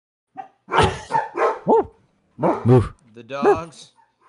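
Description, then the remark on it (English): Dogs bark and yip in several short, loud bursts, a few quick barks at a time, with brief pauses in between. “The dogs they're learning a new something home.”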